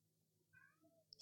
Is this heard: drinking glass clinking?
no